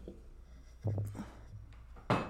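A heavy crystal sound bowl being moved from a table, with a few dull low thumps and a soft scrape followed by a sharper clunk as it is set down, with no voices.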